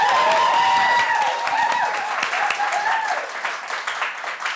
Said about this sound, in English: Can I get our imaginary clapometer and ask you to clap if you think cushions on the bed is a yay? Clap.